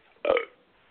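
A single short burp lasting about a quarter second, loud and throaty, then quiet background noise.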